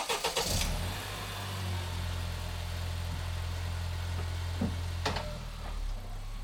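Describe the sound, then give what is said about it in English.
A car engine at a gas station cranks with a few sharp bursts as the car is started to head back onto the road, then settles into a steady low rumble that carries on throughout, fairly loud, with a couple of brief clicks near the end. “As you walk back out to your car, you're probably feeling refueled. Pun intended, and before you know it, you're back on the road.”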